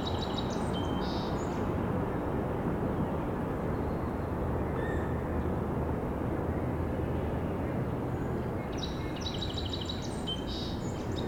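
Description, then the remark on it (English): Sandhill crane calls come in two short rattling bursts, one at the start and another near the end, set against a steady broad wash of distant industrial or construction rumble and noise. “Oh, here's our sandhill green.”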